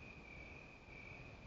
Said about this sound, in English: I don't know if you can hear it, but the crickets are chirping.